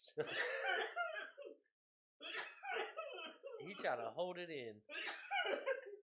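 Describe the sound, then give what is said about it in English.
Muffled, strained bursts of coughing and throat clearing from someone trying to hold them back after a hit during a one-minute dab challenge, in several bouts with short pauses, with laughter and a voice mixed in. “You just can't cough, bro. You fucked up. Hell yeah. He's trying to hold it in.”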